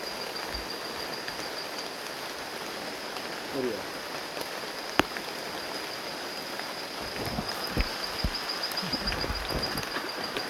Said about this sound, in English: the rain has begun to fall. It is a magical sound, and as the rain came in, the temperature dropped.